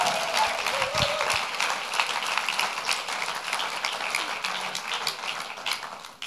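A crowd applauds steadily, dense overlapping claps forming a broad, sustained roar that holds at an even level for several seconds before easing slightly at the end, with a few cheers mixed in.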